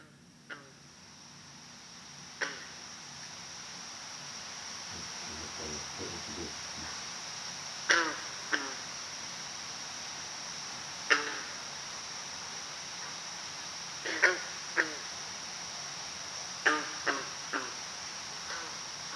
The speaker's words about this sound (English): I'm just assuming you have a recording of a green frog over there.